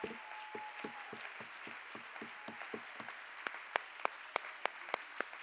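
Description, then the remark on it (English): A crowd claps hands in praise of the Lord in a steady rhythm, the claps growing sharper and more pronounced toward the end, with a faint murmur and a brief sustained tone early on. “Can we give the Lord a hand clap of praise right now?”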